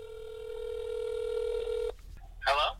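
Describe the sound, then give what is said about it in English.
A steady electronic telephone tone hums for about two seconds as a call for a phone interview goes through, then cuts off abruptly; a short burst of a voice follows a moment later. “I'm going to call him. It's our first phone interview.”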